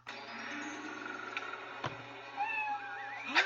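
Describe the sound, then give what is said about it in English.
A cat lets out a couple of drawn-out, wavering meows near the end, rising and falling in pitch over a steady low hum and faint background noise. “Joe, it's the cat!”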